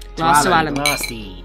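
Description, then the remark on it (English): Glasses clink together in a toast, a bright ringing touch, with a voice sounding loudly over it for a moment. “So let's raise another glass, shall we? Raise a glass to Alan.”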